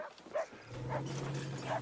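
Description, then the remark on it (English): A dog, Vincent, barks repeatedly in short, sharp yaps about every half second over a steady low hum in the background. “Vincent's barking didn't really help.”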